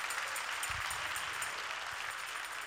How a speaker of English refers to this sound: Come on, clap your hands if you want faith from God.